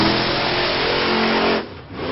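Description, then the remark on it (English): A loud engine roars and revs with a heavy, rumbling drone, dips briefly near the end, then picks back up. No one speaks. “Benjamin Franklin, inventor of the monster truck rally”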